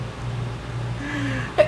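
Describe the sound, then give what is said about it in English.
A single short sneeze bursts out near the end, preceded by a brief rising vocal intake, over a steady low background hum. “Bless you.”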